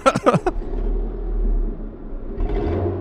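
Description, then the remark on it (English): A few quick clattering knocks open, then the engine of a beat-up car settles into a steady, low rumble as it drives to a warehouse, holding a moderately loud, even drone with a slight rise near the end. “Well, if you want to go and take a ride with me, let's get in this trash car and go to the warehouse where we'll kill a robot.”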